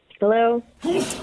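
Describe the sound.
A voice speaks a short word, then a sudden breathy, noisy sneeze bursts out right after, fairly loud, from a person in the background of the Q102 radio morning show.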